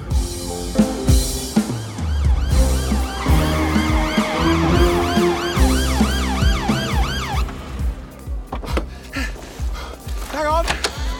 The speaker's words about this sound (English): Are those sirens for us? Oh, no.